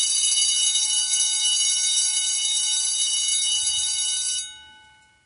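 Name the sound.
bell ringing repeatedly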